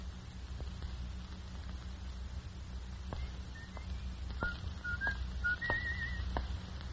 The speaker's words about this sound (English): He was coming down the street. He was whistling as he approached, and then suddenly...